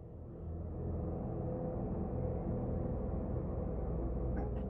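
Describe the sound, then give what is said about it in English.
A low, ominous horror-movie drone, known as the drone of dread and used in horror and thriller movies, swells in and holds steady: a dense rumbling hum with a faint higher shimmer near the end, unbroken by any voices. “It's called the drone of dread. Here, I'm gonna play it, and it's featured, and you'll know it when you hear it.”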